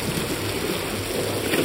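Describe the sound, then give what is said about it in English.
A steady, dense roar of heavy rain and churning surf, loud and unbroken, with a low rumble of waves underneath and no voices. “I shouldn't even have been able to see her, let alone hear her through the torrential rain and crashing waves.”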